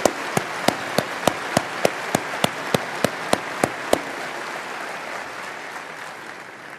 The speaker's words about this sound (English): Yeah, you ought to give them really a hand. They really have done a job for Berkshire in this last year. I'll leave the applause for them.